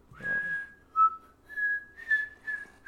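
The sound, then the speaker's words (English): A clear whistled melody in a song, several sustained, gliding notes that rise and dip in pitch, with little else around it and no one talking. “The whistle part has the same exact melody”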